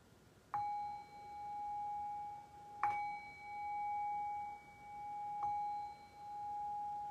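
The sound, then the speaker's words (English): A meditation bell is struck three times at a slow, even pace to close a guided meditation, each bright strike ringing out with a long, sustained shimmering tone that overlaps the next. No one speaks. “And so in the next breath or two, we'll begin to shift away from this guided meditation back into a conversational space, and I'll cue that by ringing the bell 3 times.”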